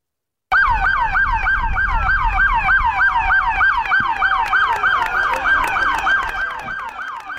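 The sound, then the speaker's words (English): Loud, continuous police sirens wail in a rapid, overlapping yelp pattern as more than two dozen New York City police units roll past a Brooklyn hospital to thank hospital workers, multiple vehicles sounding together, with low traffic rumble underneath. “More than two dozen New York City police units rolled by a Brooklyn hospital to thank their partners in this fight.”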